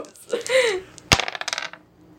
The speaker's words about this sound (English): Roll a different set of dice. Take those.